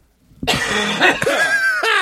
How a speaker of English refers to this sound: That was a cough, not a laugh.